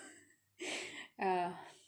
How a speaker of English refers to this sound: Now this, I'm breathing very much today.